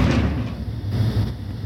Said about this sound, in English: She looked around, she saw the lock to her stall. It was slowly turning. She was frozen in fear, and she just was waiting and watching the door, waiting and watching the lock slowly turn more and more until it popped and the door swung open.